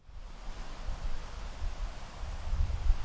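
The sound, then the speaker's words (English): Steady wind blows across an open farmer's field, a broad rushing hiss with low rumbling gusts that buffet the microphone and swell louder toward the end. No voices are heard. “So sit back, relax, and listen to a couple of men that should know better talking into a microphone in a windy field.”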